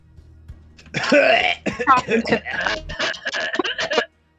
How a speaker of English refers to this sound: Should really mute my mic so I can cough.